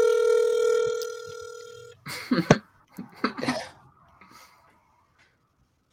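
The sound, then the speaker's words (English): A steady electronic ringback tone of an outgoing phone call sounds for about two seconds, then cuts off and gives way to a few brief muffled vocal bursts and rustles. “Answer your fucking phone.”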